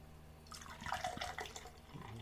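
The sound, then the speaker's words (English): A vanilla sweet cream drink is poured hard into a glass, a brief rushing, splashy gush of liquid lasting about a second and a half, with no voices. “I feel like I'm getting a hard pour.”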